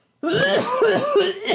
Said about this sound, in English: And on Saturday, he woke up sick as a dog. But you gotta stop coughing. Right. I have a cough.